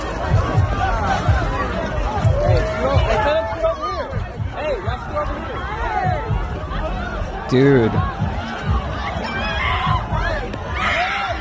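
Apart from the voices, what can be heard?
festival crowd screaming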